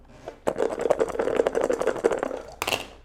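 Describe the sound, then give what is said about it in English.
Dice clatter and tumble across a hard tabletop in a quick burst of sharp clicks lasting a couple of seconds, ending with a brighter final rattle, landing on a one. “Sure, I'll try all the dice.”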